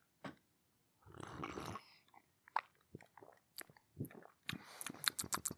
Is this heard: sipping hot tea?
yes